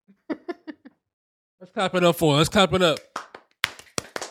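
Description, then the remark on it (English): A few sharp hand claps in a quick run, then a loud excited vocal outburst, then scattered claps again, fairly loud. “Let's clap it up.”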